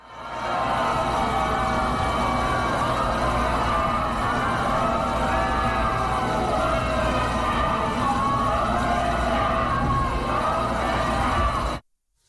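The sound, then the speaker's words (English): A large crowd on the Supreme Court steps boos Donald Trump, who came to pay respects to Ruth Bader Ginsburg, and chants "Vote him out" loudly for about eleven seconds, a dense, steady roar of many voices with shouts rising out of it, then it cuts off abruptly. “And as he was there on the Supreme Court steps, once they saw him, they started booing him and chanting, "Vote him out."”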